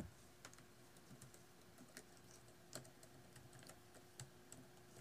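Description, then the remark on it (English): Soft, irregular clicks of someone typing on a gaming laptop keyboard, with scattered keystrokes over a steady background hum from the laptop's loud fan and no voices. “This keyboard.”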